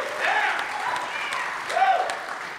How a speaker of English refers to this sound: And we are here with a live studio audience at Soma Church and Day Spa. So let's clap it up for our live audience.